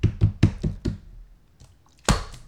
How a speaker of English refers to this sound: That was me and closing the door. And that was you dropping your Gatorade.